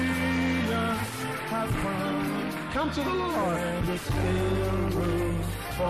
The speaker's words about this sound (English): Keep clapping for them as they come.